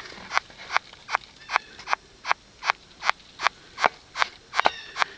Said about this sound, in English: long-horned beetle larvae just generally make a lot of noises as they chew their way through a tree. If you're ever walking through the woods and hear this sound, now you know what it is.